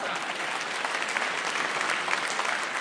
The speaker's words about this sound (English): Give her a big round of applause, everybody.